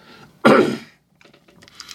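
A single loud cough bursts out abruptly and fades within half a second, followed by faint rustling and soft background noise.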